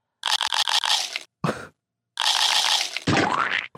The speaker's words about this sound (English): Can you get the munch sound effect out?